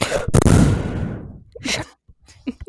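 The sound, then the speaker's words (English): A loud breath blasts straight into the microphone, one long noisy exhale fading out over about a second, followed by a few quieter short breaths and mouth sounds. “You deserve the breathing in your ear for that one.”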